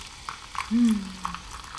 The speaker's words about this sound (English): But without further ado, I'm sure people are curious, so let's just pour some toasty hojicha.